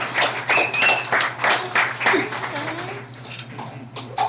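An audience bursts into a round of applause, dense crackling clapping that carries on steadily for several seconds, with a few whoops rising through it over a low constant hum.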